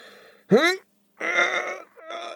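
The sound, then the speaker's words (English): A voice imitates a strained fart in three bursts: a sharp rising squeal, then two longer buzzy, harmonic rasps separated by short pauses, fairly loud. “Yeah, he farts.”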